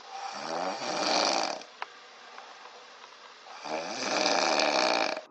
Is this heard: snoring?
yes